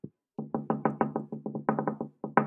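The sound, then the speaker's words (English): A quick, uneven series of knocks on glass, around a dozen sharp taps in clustered bursts after a single opening rap, fairly loud with no voices. “Don't you hear somebody knocking on your glass?”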